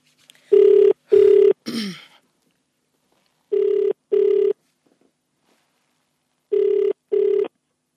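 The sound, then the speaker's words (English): Outgoing-call ringback tone of a phone call placed early in the morning sounds three times in a double-pulse pattern, each pair a steady, clear electronic burll separated by silence, with a brief voice murmur after the first pair. “All right, it's ringing.”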